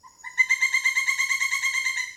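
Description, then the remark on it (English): A strange, cawing bird call rings out alone in the distance, a rapid run of harsh, buzzy pulses strung together into one steady, chattering stretch lasting about two seconds. “So he keeps hearing this strange sort of cawing sound in the distance.”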